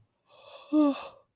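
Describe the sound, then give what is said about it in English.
A single yawn from a person starting a recording: a breathy inhale swells into a short voiced, falling groan, then trails off in a soft exhale. Just over a second long, with no talking. “Yawning, sorry. I always yawn whenever I start recording.”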